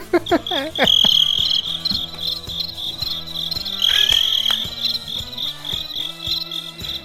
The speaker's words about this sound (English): It wasn't very funny, sir. Okay. You got the crickets.